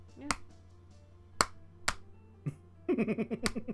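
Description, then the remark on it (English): About five sharp, crisp hand claps land at uneven, stumbling intervals, an impression of the speaker's father trying to clap on beat with no rhythm or timing; a pulsing voice, like laughter, joins over the last second. “Dude, do you want to hear an impression of my father clapping? What? Like, trying to clap on beat.”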